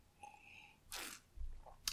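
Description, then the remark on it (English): A quiet sip from a drink: a brief airy slurp, then a soft low thump like a cup being set down, and a short final sharp noise. No one speaks. “I'm already drinking, so let's have a sip.”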